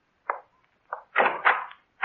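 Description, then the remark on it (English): A door being opened: a few short knocking clunks, then a longer, louder scraping rattle of the latch and door moving, with another clunk at the end. No voices. “Open the door.”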